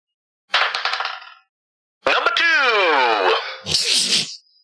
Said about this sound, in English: All right, roll that dice.